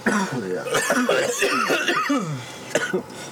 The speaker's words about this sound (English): Yeah. As we all proceed to cough.